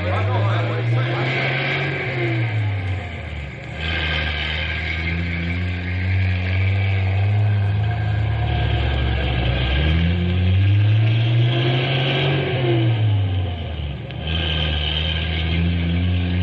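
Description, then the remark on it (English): Heavy truck engines rev up and down several times, their low droning pitch rising and falling as the trucks pull away, taking a crew and their equipment toward Central City. The sound is loud and continuous. “Stumpy get trucks to Central City plenty fast.”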